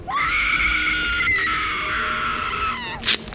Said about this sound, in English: Someone screams.